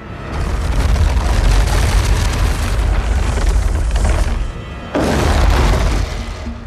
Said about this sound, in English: The Lord of the Rings movies were full of great monster sounds. One of my favorites was the fire-breathing demon called the Balrog. Sound designers created his menacing rumble by dragging a cinder block across a wooden floor.